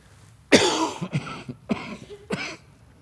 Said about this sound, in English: Please excuse me. I've been fighting off a little cough and cold the last couple of days.